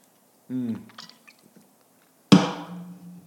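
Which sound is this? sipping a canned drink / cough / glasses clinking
sipping a canned drink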